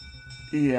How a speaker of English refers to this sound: There is no wind. Okay, I think I'm going to head off here because this is kind of freaking me out. The bell is just ringing by itself.